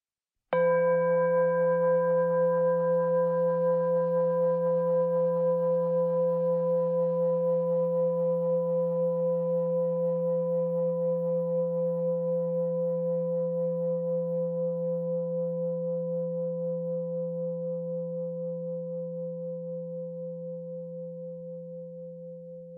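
A single meditation bell is struck once, then rings on alone in a long, steady hum of layered tones. It slowly fades over about twenty seconds, with no voices.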